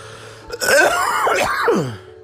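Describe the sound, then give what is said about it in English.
A loud bout of throat clearing and coughing from a sick person in bed on a lot of medication, drawn out into a strained, gagging groan with wavering pitch, lasting about a second and a half with no talking. “You eat and then you just want to cough it fucking back up.”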